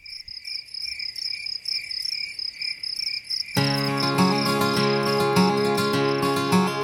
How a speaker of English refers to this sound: Well, I hear crickets.